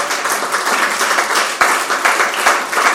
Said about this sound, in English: Don't be jealous. You can clap for him.